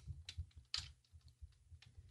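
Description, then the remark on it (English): Quiet, irregular clicking of keys on a computer keyboard as someone types messages, a handful of soft taps over a couple of seconds with a low thumping undertone and no voices. “You know, sorry, I'm just typing some messages here. I'll get off the keyboard in a minute.”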